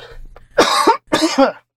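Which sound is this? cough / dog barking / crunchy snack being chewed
cough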